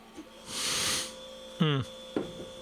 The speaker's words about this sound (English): Beer fridge just came on. I always forget to unplug that before I go live.